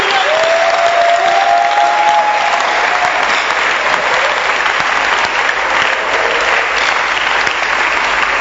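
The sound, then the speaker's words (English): An audience claps hands for a book by Bishop Dagwood Mills in a sustained, dense burst of applause lasting several seconds, loud and steady, with a faint whistle-like tone rising briefly near the start. “And your hand clap is us.”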